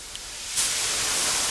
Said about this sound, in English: The steam really picks up as the further in we go. Another blast of steam.